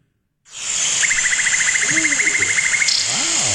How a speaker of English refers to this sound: Amazon jungle.